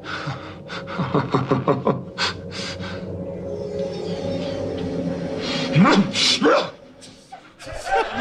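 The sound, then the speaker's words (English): Actor Patrick Stewart, acting in a scene, imitates a dog, letting out a quick run of loud barks, then after a pause a rising, strained yelp over a low background hum. “What do you had a bark there for, Pat Stew?”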